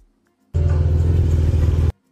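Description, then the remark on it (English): A loud car engine of Gunna's luxury vehicle in traffic roars for just over a second, a deep throaty rumble with a rough rattle, cutting in and out abruptly. No one speaks. “Gunna outside in a luxury vehicle.”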